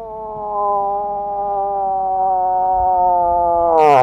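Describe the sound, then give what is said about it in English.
A person imitates a cow moose's mating call of the September and October mating season: one long, loud, siren-like wail that holds a steady pitch for several seconds, then breaks off in a rough, falling finish. No talking. “For 15 years, he's been imitating the come-hither sounds of the September and October mating season as part of his wildlife photography business.”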